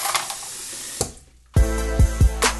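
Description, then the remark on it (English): Water sloshes and splashes in a sink as a hand plunges into soapy water to grab a dirty dish, followed by a louder stretch of clattering and knocking with a few sharp thuds as dishes are washed. No one speaks. “I watch the bubbles float up as I plunge my hand back into the soapy water to grab yet another dirty dish.”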